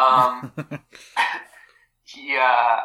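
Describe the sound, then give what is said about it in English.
A dog barks: a burst of sharp yelps in quick succession, then a longer, whiny bark after a short pause, loud. “My dog just ran up to me, and it really startled me.”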